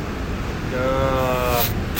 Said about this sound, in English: We literally come out of this cave, and it is just, you can probably hear it, but ocean waves going nuts. Probably, what are these, 20-foot swells?